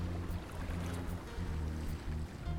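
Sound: boat moving through water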